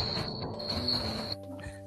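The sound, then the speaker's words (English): A steady, high-pitched cricket chirp drones on for about a second and a half, then cuts off abruptly, leaving a low background hum. “Crickets.”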